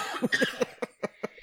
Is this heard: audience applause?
no